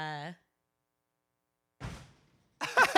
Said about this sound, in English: The cat just opened the door. That's the door slamming.